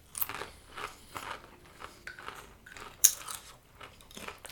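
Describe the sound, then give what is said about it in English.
Crisp, dry crunching of potato chips repeats in uneven bursts about twice a second, with one sharper, louder crack near the end and no talking. “I would eat a whole bag of those before having one of these. It's just so gross. Now we have to eat it.”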